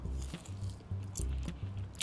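Wet chewing and soft crunching of chicken with vegetables in a steady rhythm of bites, with occasional sharp clicks and no talking.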